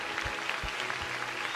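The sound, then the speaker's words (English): An audience claps and applauds to celebrate people who have just joined the family of God, in a steady, dense patter of many hands, with a few heavier low thumps mixed in, at a moderate level. “You're probably saying, why are people clapping?”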